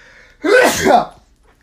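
A single loud sneeze bursts out sharply after a brief quiet moment, with a quick breathy intake leading into the forceful release.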